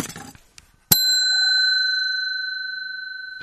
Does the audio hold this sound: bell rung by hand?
yes